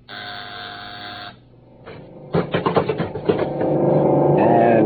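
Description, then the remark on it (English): A buzzer used to summon the robot Bismarck drones with a steady, reedy tone for just over a second, then gives way to mechanical clicks, clattering bursts and a loud, sustained whirring hum. “I'll buzz Bismarck.”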